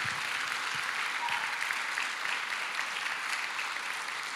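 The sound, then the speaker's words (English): A crowd applauds steadily, a dense, even wash of many hands clapping at constant loudness with no voices standing out. “That is the worst clap I've ever.”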